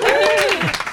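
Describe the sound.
A burst of audience applause, dense, steady clapping at full volume for about a second, with a voice rising and falling over the top of the clapping.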